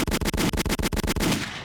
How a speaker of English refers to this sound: Boom, boom, boom, boom, boom, boom. I just was wilding with gunshots.